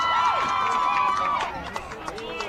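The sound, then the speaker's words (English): A baseball stadium crowd lets out a brief excited roar at a pitch lined to left that goes foul, with a few shouts rising above it, then quickly settles back into a lower murmur of scattered voices. “Crowd got a little excited, but that was foul all the way.”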